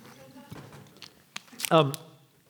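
Quiet mouth sounds: a few soft clicks and slurps, then a short throaty gulp as a speaker takes a sip of water and swallows, with no talking.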